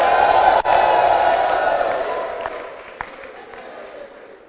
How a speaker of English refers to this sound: Are you clapping your hands for Jesus, somebody? Give the Lord a shout.